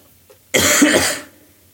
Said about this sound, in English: Right, I'm going to cough, guys.